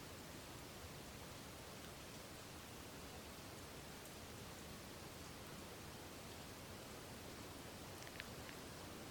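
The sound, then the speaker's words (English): Steady rain falls in a soft, continuous hiss, even and unbroken throughout, with a couple of faint drips near the end. No voices. “The rain is such wonderful invitation for Dharma reflection.”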